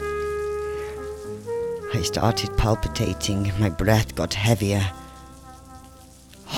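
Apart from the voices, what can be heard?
rain falling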